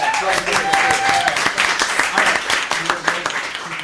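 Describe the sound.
A crowd breaks into steady, dense applause lasting several seconds, many hands clapping at once in a loud, crackling wash, with a few voices cheering faintly underneath.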